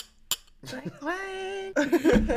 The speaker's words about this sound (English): Cheers. Cheers to us. Cheers, cheers to you guys. Hold on, I'm so proud of us. Let me try to find a glass. Woo-hoo. Clink, clink.